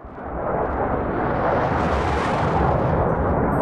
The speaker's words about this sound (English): You hear the sounds of bombings and shooting day and night.